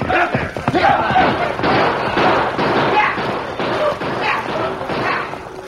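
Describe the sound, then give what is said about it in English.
A loud, dense rumble of a longhorn cattle stampede fills the whole stretch, punctuated by sharp gunshot cracks and overlapping shouts from hard-riding outlaws driving the herd, all chaotic. “The band of shouting outlaws raced toward the herd with guns barking.”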